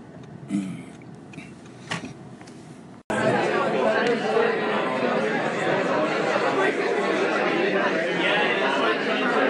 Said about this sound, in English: This is the sound of a crowded room in the west of Ireland at an unconference called Congregation. I assume it's quite impossible to say anything you will catch. I'm just going to walk my way around the room.